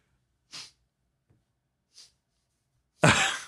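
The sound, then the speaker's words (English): Harsh, sputtering coughs from a man choking after aspirating some of his beverage: two short bursts spaced apart, then a much louder, rough fit of coughing at the end. No talking. “I think he might have aspirated a little bit of his beverage just now.”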